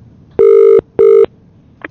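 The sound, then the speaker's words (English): A loud, steady outgoing phone ringing tone from a call placed during a live radio broadcast sounds in two quick bursts close together, the classic double-ring pattern, followed by a brief faint click at the end. “we've accidentally called you, mate.”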